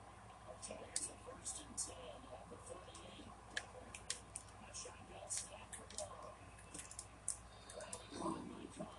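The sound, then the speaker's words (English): Quick, irregular clicks of game controller buttons tap away, sometimes in fast bursts, while playing an American football video game, over a low, muffled background of voices or game sound. “It was all clicking X the whole time.”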